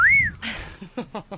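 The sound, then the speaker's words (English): A quick wolf whistle at a woman, one bright rising-then-falling tone lasting a fraction of a second, followed by a burst of noise and a few murmured voices. “Can't whistle at a chick and fucking go.”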